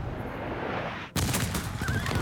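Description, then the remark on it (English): Horses neigh and whinny over a dense, roaring rumble as the Mamluk cavalry charge the French guns at the Battle of the Pyramids in Egypt, with pounding hooves; the noise cuts abruptly about halfway, then returns louder and brighter, with a high whinny near the end. “The Mamluk cavalry charge the French guns, scimitars glinting.”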